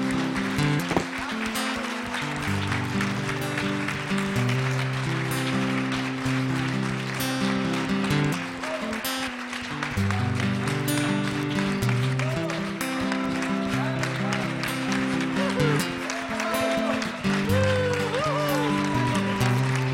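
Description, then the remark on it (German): An audience at a church service gives God a thank-you applause, a steady, dense patter of many hands clapping for the full length over sustained, organ-like musical chords that keep playing underneath. “Komm, lass uns dem Vater mal einen Applaus geben, einen Dankapplaus.”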